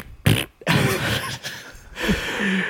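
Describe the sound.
A person makes loud mouth fart noises, a few sputtering raspberry bursts of varying length strung together with brief gaps, and no talking.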